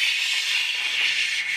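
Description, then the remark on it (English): A voice imitates steam rocket thrust with a loud, steady hissing rush, a sustained breathy "shhh" held evenly for over a second with no other sound. “So it should have made the same amount of thrust, 4,000 to 5,000 pounds of thrust, might peak a little bit at 6, because steam rockets, they go like this.”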